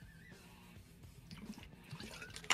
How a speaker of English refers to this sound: Sorry, I need to take a swig of water.